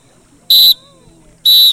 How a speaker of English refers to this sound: And then final whistle we have is a three medium blast whistle.